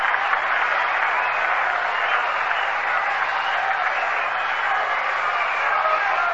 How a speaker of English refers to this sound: Frank Thomas short hops it up with it, throws over to first base in time, and he's out. An appreciative response from the crowd here at the Polo Ground.